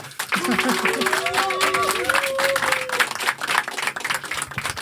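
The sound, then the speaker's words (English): An audience at a live show with a cooking demonstration applauds with steady, dense clapping for about five seconds, and a voice lets out a drawn-out cheer over it in the first few seconds. “So a big round of applause, please.”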